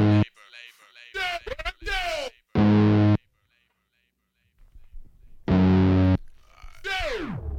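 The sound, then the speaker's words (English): A loud, distorted electronic music recording plays in choppy bursts: buzzy sustained tones alternate with sliding pitch sweeps, broken up by a short quiet gap in the middle. “Here's some more music.”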